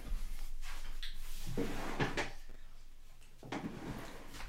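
A sock drawer slides open with a wooden scrape and is pushed shut again a moment later, fairly loud, with no talking.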